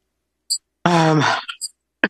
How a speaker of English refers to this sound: Excuse me. So I've got a cough now. And I think throughout my time in Gaza, I had a cough.